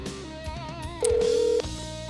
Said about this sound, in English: Let's get the technology of the phone cranking. Ooh, the ringing. Ooh. Hope he answers. We'll see.